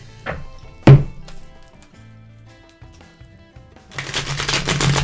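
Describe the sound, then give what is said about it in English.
A deck of tarot cards being shuffled to pull a card for the day: a few soft thumps and taps, a quieter pause, then a dense, papery riffling that builds and continues to the end. No one speaks. “I love the way these shuffle.”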